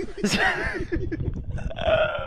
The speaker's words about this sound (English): You want to fart in the mic?